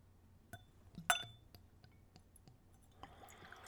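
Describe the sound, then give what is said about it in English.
Glass clinks sharply against a giant bottle, followed by a few small taps, then yellow liqueur starts pouring neat, at room temperature, into a clean Glencairn glass with a soft, steady gurgle near the end. Quiet, no talking. “So let's see if I can manhandle a giant bottle into the glass.”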